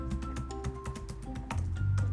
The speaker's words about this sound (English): Oh my God, I'm typing this in. Let's see.